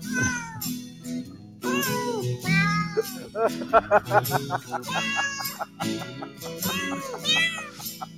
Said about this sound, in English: You know those kitty cats are going to heaven with that song. Wow. And it has that southern twang to it.